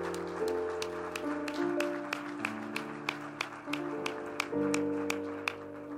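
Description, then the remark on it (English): An audience claps their hands in a steady rhythm for two young men after a prayer, the sharp claps sounding clearly over sustained organ or keyboard chords that shift beneath them. “Let's clap our hands for these two young men.”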